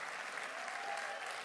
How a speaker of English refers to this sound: Well, Senator Cruz, thank you so much. I wish you could hear all the people clapping and cheering for you. They're standing for you because they love you and they appreciate you.